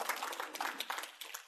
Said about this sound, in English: That's right. You can applaud that.